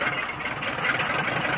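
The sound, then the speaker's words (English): A car engine runs steadily with a constant mid-pitched rumble and a slight knocking texture, holding an even loudness throughout with no voices. “Then enter the car.”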